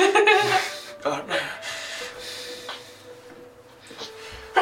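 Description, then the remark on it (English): A sudden, loud sneeze bursts out at the start, followed by a shorter breathy snort-like burst, then the sound trails off into a soft, quiet hiss. “Bless you.”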